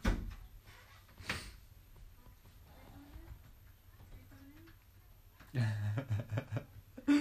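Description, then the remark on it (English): A door opens as someone comes in: a sharp click early on, a quiet stretch, then a burst of knocking thuds and rustling movement before a final bump. “Because I'm like, please don't come in that door.”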